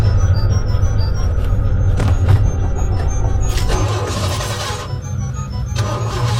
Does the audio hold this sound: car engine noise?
yes